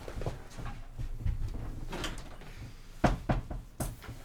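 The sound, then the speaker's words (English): A chair is moved back, scraping and shuffling across the floor, with low rumbling drags and a few sharp knocks near the end. Nobody speaks. “All the dice have been placed back into the cups, and I can now move my chair back.”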